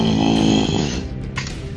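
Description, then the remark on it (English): A man roars into the mic, imitating a creature's tremendous bellowing roar, a loud, gravelly, sustained growl with a rasping low rumble that fades out into a breathy tail. “So, now that his health has dropped low enough, you see his eyes go glowing red, and he just bellows out this tremendous roar.”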